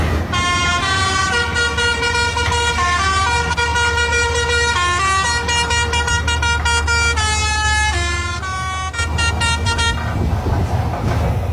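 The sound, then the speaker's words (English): A snowplow horn beeps out a tune for about nine seconds, a loud string of steady, buzzy notes stepping up and down in pitch over a constant low engine rumble, then stops. “That's one bored fucking plow driver.”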